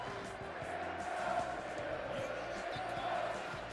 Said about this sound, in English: Listen to the chant. Here we go, Steelers. Here we go.